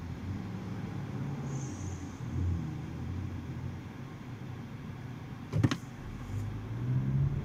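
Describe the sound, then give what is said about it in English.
Low, steady engine rumble heard from inside a Mazdaspeed car, growing a little louder and more tonal toward the end as it picks up, with one sharp click partway through. No talking. “I will blow him away with my Mazda speed and his little stupid pickup truck.”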